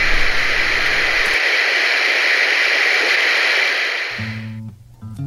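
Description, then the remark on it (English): A loud, steady burst of radio static hisses for about four seconds, with a low hum underneath at the start, then fades out as a low droning tone returns. “Your listening choices. Us? Or static.”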